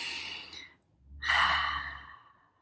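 A slow, deep relaxing breath drawn in through the nose, a brief pause, then a long, full exhale that swells and fades away, with no talking.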